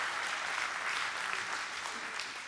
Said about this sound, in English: I was going to keep going until somebody clapped right there.